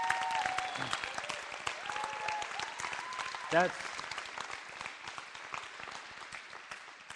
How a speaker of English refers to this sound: So could we just give a riot applause for what just happened.